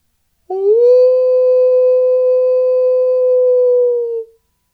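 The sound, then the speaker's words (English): A single long, steady howl from a dog or wolf rises quickly at the start, holds one clear pitch for several seconds, then dips and fades. It is loud and alone. “And who will be howling free when the full wolf moon is rising?”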